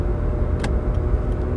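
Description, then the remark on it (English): A beat-up cop car drives past, its engine rumbling steadily for a moment, a low continuous drone with a brief brighter hiss partway through, and no one talking. “He has, like, a beat-up cop car, and he just, yeah.”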